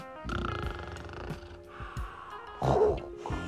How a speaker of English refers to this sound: The monster was fast asleep and snoring his head off.